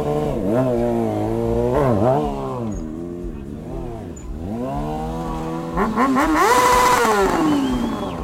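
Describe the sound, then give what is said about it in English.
A motorcycle engine revs loudly, its pitch repeatedly climbing and dropping in several throttle blips, ending with a harder, rougher surge of revving. “Let's just listen at what that engine sounds like.”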